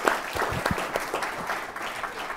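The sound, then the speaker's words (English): A City Club audience applauds a Lieutenant General speaker, a dense wash of many hands clapping steadily at moderate volume, sustained for a couple of seconds with a few sharper claps standing out near the start. “A round of applause for Lieutenant General.”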